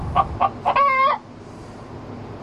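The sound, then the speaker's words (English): A chicken clucks three quick times, then lets out a longer, drawn-out squawk, fairly loud, followed by quiet background noise. “Oh, we almost got through the whole track of clucking.”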